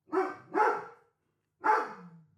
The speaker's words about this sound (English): Don't come to my fucking house because this is what you're going to get. What an incredible guard dog.